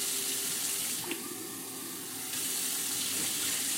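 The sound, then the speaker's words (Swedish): A kitchen tap runs steadily, a broad hissing rush of water with a brief clink partway through and the flow briefly easing before picking back up, as water is run while preparing a meal at home. No one speaks. “Ja, nej, vi kör igång vatten här.”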